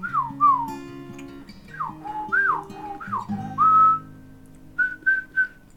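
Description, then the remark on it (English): A person whistles an imitation of birdsong: pairs of quick downward-swooping notes, a longer held note, then three short bright chirps, over a low steady drone. “You can hear bird song in the distance.”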